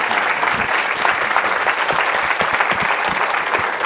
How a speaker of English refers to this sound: I'd like to give him one last round of applause. Thank you. Thank you. Cheers, Matt. Thank you very much.